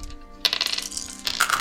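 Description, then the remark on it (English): A short burst of hard plastic clattering: several dice are rolled and tumble onto a table in quick, bright clicks, fairly loud, with no one talking. “Sorry, there's gonna be some loud dice clacking.”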